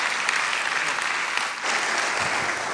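Sustained applause from a church audience, a dense, steady wash of clapping that holds loud throughout with a brief dip midway before swelling again.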